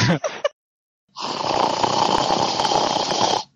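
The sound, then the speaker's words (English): One huge, drawn-out snore, loud and rattling, rasps on for about two seconds after a brief sharp snort-like burst and a moment of silence. No one speaks. “… will let out a giant snore”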